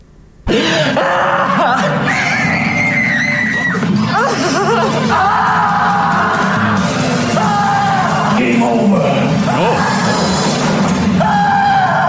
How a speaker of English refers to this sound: Those screams suck. I think that's from an older Saw movie.